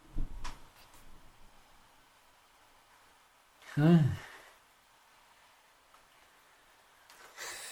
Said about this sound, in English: Take your finger out, which is nice and wet with the whiskey, put that into the palm of your hand, rub it together, and then cup it over your nose and have a big sniff of that.